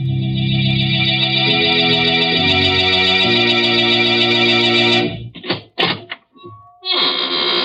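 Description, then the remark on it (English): Sustained, dramatic organ-like chords play for several seconds, then break off for a loud, slow squeaking door that creaks open in a few drawn-out bursts before the music swells back. “But I always smile when I open the squeaking door on Tuesday nights.”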